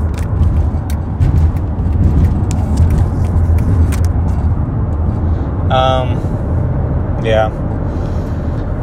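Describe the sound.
Steady, loud road rumble of a car moving along busy Highway 35 in traffic as the driver changes lanes, the engine and tire noise constant throughout, with two brief bursts of a voice near the end.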